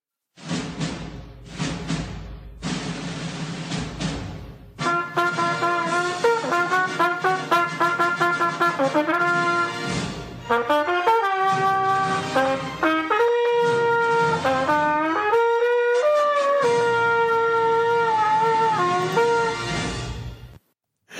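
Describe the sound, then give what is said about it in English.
The new Trainwreck Trophy theme song: a loud, brassy tune lasting about twenty seconds. It opens with punchy choppy stabs, then bright sustained horn-like melody lines take over and build to a sudden ending, with no voices. “Which means that the first thing that we have to do is obviously unveil the new Trainwreck Trophy theme song.”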